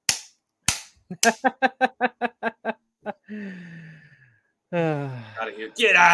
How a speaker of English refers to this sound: You know, Will Dissly getting one of his 3 touchdowns for the year. Golf clap.